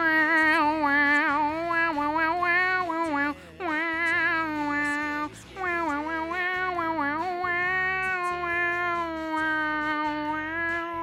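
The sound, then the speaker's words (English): A voice imitates the synth instrument line from the beginning of a song, humming a loud, nasal, wavering tone that slides up and down in pitch for about eleven seconds, broken only by two brief breaths. “Hope you enjoyed my little impersonation there.”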